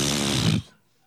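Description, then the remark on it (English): A voice imitates a fart with a loud, buzzy, sputtering raspberry that lasts about half a second and cuts off abruptly, followed by near silence. “I said, I have to fart. And they pulled back, and I let out a good one.”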